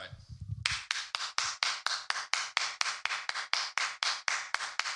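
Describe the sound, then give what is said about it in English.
Steady, rapid hand clapping, about twenty sharp claps in a brisk even rhythm, loud, each one echoing briefly in a room; a low rumble precedes the first clap. “You want to hear some clapping? Let's clap us out.”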